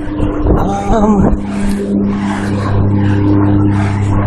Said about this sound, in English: Give me a second while this lawnmower passes by.